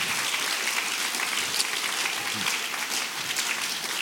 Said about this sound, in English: Somebody ought to say amen. Clap your hands unto the Lord, everybody.